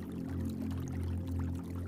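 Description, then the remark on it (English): A steady, continuous rush of falling water with a low gurgling churn from a small stream or cascade, even throughout with no voices. “Tree frogs sing along with the gentle hush of the falling water and gurgling stream.”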